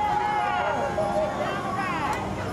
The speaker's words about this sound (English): Calls of thank you from the crowd of mourners on the street, very much celebrating the life and legacy of Congressman Lewis.